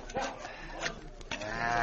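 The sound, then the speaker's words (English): A horse whinnies in a shrill, quavering call near the end, preceded by a few scattered thumps and scuffs, like hooves moving off as bandits get on their horses and ride away very fast, over a faint background hiss. “hear them get on their horses and ride away very fast.”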